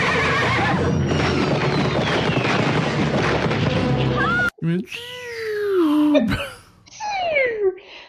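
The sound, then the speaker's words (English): A dense, noisy rumble fills the first half, then cuts to a couple of loud horse whinnies with wavering pitch that slides downward, the second one shorter. “Yeah, that horse just looks dead, I guess.”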